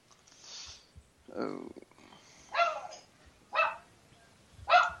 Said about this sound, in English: Whose dog is that?